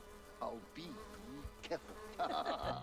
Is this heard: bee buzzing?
yes